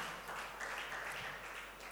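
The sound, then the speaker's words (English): Faint, scattered clapping from a small handful of people, a thin patter of hands with no voices over it. “Only a few disciples are clapping here.”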